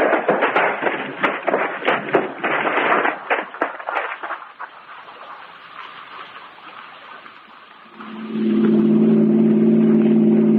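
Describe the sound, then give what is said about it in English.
A car engine settles into a steady, low idling hum near the end, after a stretch of clattery rumbling and fainter road-like noise, as the car is pulled over and stopped late at night with its lights off and the engine kept running. The hum is constant, with no talking. “Pull over and stop then. Douse your lights. Keep it running.”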